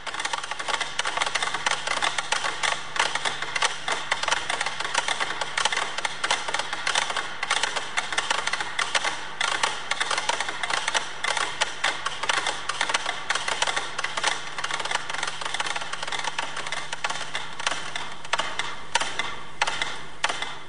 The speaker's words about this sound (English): There's 100 of them, all set to different tempos. The piece is called Poème Symphonique. Georges Ligeti wrote it in 1962 as a critique of contemporary music. As the composition progresses, more and more metronomes wind down and stop.